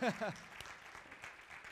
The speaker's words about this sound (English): But come on, church family, say hello to everybody joining us by clapping. Yeah.